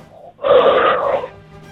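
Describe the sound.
A voice imitating Darth Vader makes one loud, drawn-out breath, a hissing, mechanical rasp like a heavy respirator, lasting close to a second before fading into quiet, while singing Old MacDonald Had a Farm.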